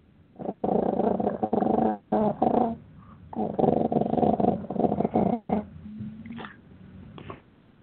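A cat named Dennis, with a phone speaker held to his ear, growls in long, rumbling bursts with harmonic whines mixed in, then breaks into a drawn-out yawning sound that trails off into quieter, higher whimpers toward the end.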